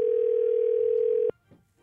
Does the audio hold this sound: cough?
no